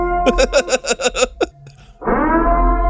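An eerie, siren-like wail of the creature Siren Head: a rapid run of pulsing, warbling cries breaks off, then swells into a loud, sustained droning howl rich in harmonics.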